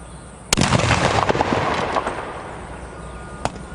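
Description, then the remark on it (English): A loud consumer fireworks mortar round, held by a child mannequin and set off by lighting the fuse, bursts with a sharp boom, followed by crackling and a rumbling tail, then a second fainter pop a few seconds later, heard outdoors with no talking. “Watch what happens when we light the fuse. It takes about 6 seconds for him to get out of the way, and the blast can be significant.”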